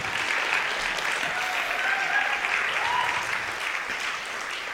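Steady audience applause fills the whole stretch, a dense, even wash of many hands clapping at a fairly loud level, with a few faint whistles or cheers rising briefly above it.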